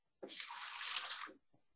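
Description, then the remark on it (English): Beer from a can pours down a sink in a steady splashing rush lasting about a second, then cuts off abruptly, followed by a faint knock. “Finally, a can that's been doing the sink.”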